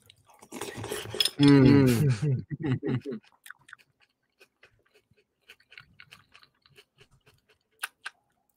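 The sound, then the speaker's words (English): A voice sounds briefly at the start, then quiet chewing during a mukbang livestream, with scattered light clinks of cutlery against a dish, irregular and soft, ending with a couple of sharper taps. “Welcome to my mukbang stream”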